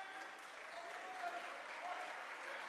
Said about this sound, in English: And Elm Creek bench getting up, applauding the effort there.